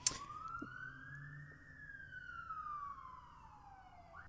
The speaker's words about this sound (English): Jeez, that siren, I don't know. I'm sure you heard it in the background.